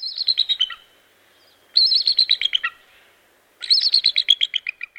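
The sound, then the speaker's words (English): An eagle calls in three bursts of rapid, high-pitched piping chirps, each series tumbling downward in pitch, clear, with short silences between them. “Consider the exquisitely keen eye of the eagle.”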